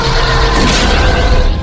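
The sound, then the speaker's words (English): A plane crash: a loud, dense roar of rumbling noise that swells into a harsh, crashing burst partway through, then keeps churning steadily without any voices. “You crashed a plane, and it was a plane crashed.”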